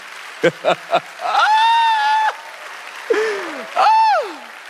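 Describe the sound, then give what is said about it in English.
An audience clapping during a sermon on discipleship, with a few sharp claps at the start and then a steady wash of applause under long, drawn-out vocal calls that rise, hold and fall in pitch. “The reason why I love y'all, the fact that I could be preaching on discipleship and y'all clapping like y'all clapping, the world's not gonna be ready for y'all.”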